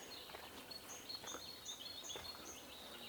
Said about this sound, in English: All we can hear are the birds. I mean, it's right in the forest, deep in the forest.